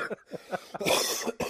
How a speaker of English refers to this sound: You're gonna get me coughing again.